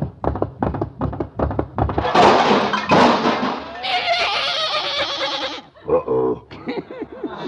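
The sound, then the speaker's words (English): A quick run of hollow thumps as a horse is mounted, then loud, strained animal cries that waver and bray for several seconds, followed by a few shorter bleating calls. “Good, I'll help you mount your horse. Up you go.”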